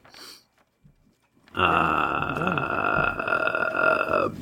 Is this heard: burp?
yes